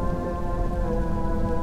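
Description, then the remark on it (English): Heavy rain pours down in a steady, dense hiss, drumming continuously on surfaces, with a faint low rumble and sustained tonal hum underneath and no voices. “I watched as the flames leapt from one tree to another, even though it was raining more and more.”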